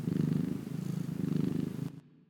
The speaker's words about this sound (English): That was a cat purr.